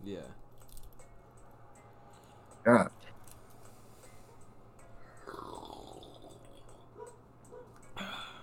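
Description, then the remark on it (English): One short slurping sip of water stands out against a quiet, low background hum, with some soft rustling toward the end. “Oh, what you sipping on? Good drink? No, water.”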